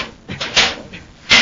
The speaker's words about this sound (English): Buzz and Happy are trying to get out of a huge castle on the planet Venus, where Polidor is holding them prisoners. The two Space Patrollers are struggling, trying to open a heavy door.